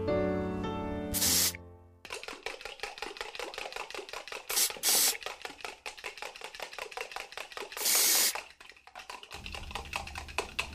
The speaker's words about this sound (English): Why do you keep spraying me with that aerosol can?